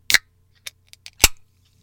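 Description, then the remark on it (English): Fingers tap on a can of grapefruit-flavored LaCroix sparkling water: a few sharp, bright metallic clicks at an uneven pace, two loud and three softer, with no one speaking. “I'm gonna tap on this can of LaCroix.”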